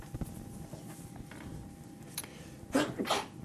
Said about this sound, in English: Bless you.